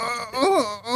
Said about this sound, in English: There's more groans and heavy breathing than in a porno film. That's right, there is too. And there's this whole conversation that goes on. And in the background, you can hear these women down the hole groaning and breathing.